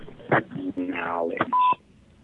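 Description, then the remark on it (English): An answering machine beep: one short, steady, clear electronic tone right after a brief burst of a recorded greeting asking callers to leave a short message and phone number, then quiet line hiss. “At the beep, please leave a short message and your phone number, and we will return your call as soon as possible.”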